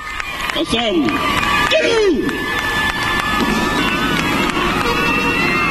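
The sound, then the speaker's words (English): A large crowd of thousands welcoming the Pope at the airport in the Central African Republic cheers and sings in a loud, continuous roar, with a couple of high swooping voices rising and falling in the first two seconds and sustained whistling tones beneath. “Thousands of people welcomed him at the airport in the CAR on the last leg of his Africa tour.”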